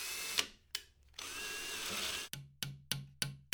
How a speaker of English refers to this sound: I'd never used a drill before in my life, except for occasionally quote unquote helping my dad because I actually failed at using the screwdriver. I hung a shelf by myself for the first time ever.